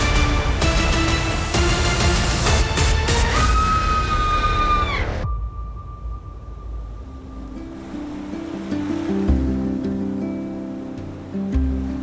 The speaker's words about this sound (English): High above the crashing waves and definitely not shark-infested waters. Definitely not.